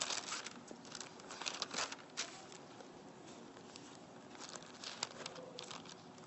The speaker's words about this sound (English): Just go ahead and flip to Revelation 21 and just look at that, just so you see, so you don't just believe me. We look at Revelation chapter 21. I'll flip there too.